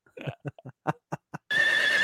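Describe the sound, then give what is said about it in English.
A horse whinnies, starting with a quick run of short, sputtering nickers and then breaking into a loud, sustained, shrill squeal. No one talks over it. “Yeah, that's a horse dying.”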